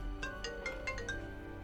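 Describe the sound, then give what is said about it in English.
A phone ringtone at a workplace, signalling a business call, plays a quick series of bright electronic chirps in a rapid, melodic pattern, moderately loud, with no talking over it. “If you got any suggestions, any comments, and there goes my phone.”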